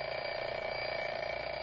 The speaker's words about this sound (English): All right, sound effects man, ring the alarm clock.